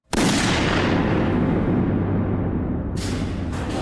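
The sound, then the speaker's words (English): A single loud movie gunshot sound effect, fired in a room, cracks out and rolls into a long, booming echo that lingers for seconds, with a fresh burst of noisy reverberation near the end. No voices. “Oh, here's I have plenty of gunshots, obviously, but I also have the gunshot from the room.”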